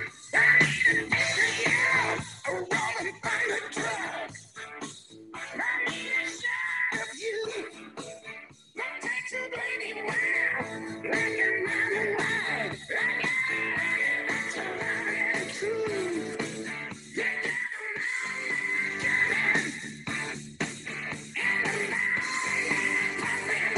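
A loud hard rock song plays throughout, with distorted electric guitar riffs over a steady, driving drumbeat and dense, bright overall sound.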